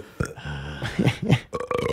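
A long, loud burp, croaking and rumbling with a wavering pitch for about two seconds before breaking off into a rougher final gurgle. No one talks over it.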